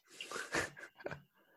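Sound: dog snorting and breathing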